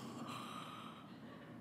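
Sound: imitated snoring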